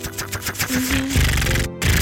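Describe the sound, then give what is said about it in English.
A rapid run of small, crisp clicks ticking in quick succession as an iPod click wheel is spun around by a thumb, followed by a burst of rustly noise with a brief dropout near the end. “The little clicking noise.”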